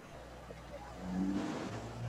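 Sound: car engine revving nearby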